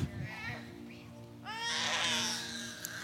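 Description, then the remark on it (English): A baby cries out in a rising, wailing burst, loud and sustained for over a second, after softer fussy whimpers, with a steady low hum underneath. “Scream on. It's okay.”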